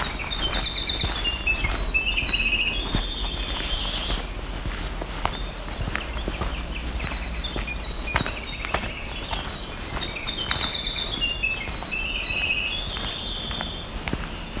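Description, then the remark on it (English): A black-throated green warbler, the fourth one heard, sings buzzy, high phrases repeatedly amid a busy dawn chorus of other birds, with soft footsteps crunching throughout. “There's another black-throated green warbler making that song.”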